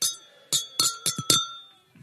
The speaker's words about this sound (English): Hold your Capri Sun. Okay, remember, we're going to do this 7 times. So don't drink it all at once. We're going to cheers. I want to hear it.